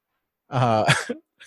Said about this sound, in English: did a full-on like lion roar yawn in the background.